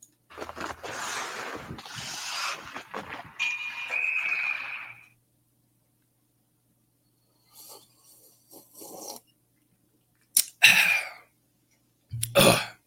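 Someone takes a sip of bourbon: a long, noisy slurp with a brief whistling tone, then silence and a few short, scattered bursts like a swallow and an exhale. No one speaks.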